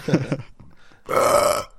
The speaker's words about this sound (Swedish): Så, klockan 17.37 var det inplanerat en rap där. Ja. Ja. Så var det med den saken.